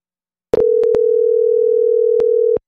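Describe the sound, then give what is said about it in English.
A telephone rings once as a steady, unbroken electronic tone lasting about two seconds, with a few sharp handset clicks at the start and end. No one speaks. “Instead of doing like any kind of like sound or music or anything front end, just have like a phone ringing, and then we answer the phone, right?”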